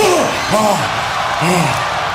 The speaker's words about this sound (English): Look at that crowd pop. Listen to that crowd.